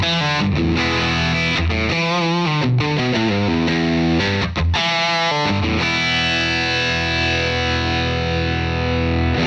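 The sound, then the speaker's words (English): A heavily distorted electric guitar, played through Bias desktop amp and effects modeling software, plays a fast, chugging riff with ringing sustained chords, loud, with a saturated amp tone throughout and no voices. “an amp and effects modeling app that goes down to the point where you can swap out different types of tubes”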